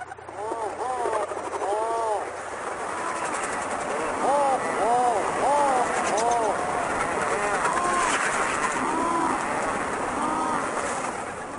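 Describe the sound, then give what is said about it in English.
Rhinoceros auklets give repeated low, groaning moans, rising and falling in overlapping series, fairly loud over a constant rushing background like wind or surf. “I have a little audio recording that I found I want to share listeners about of a rhinoceros auklet.”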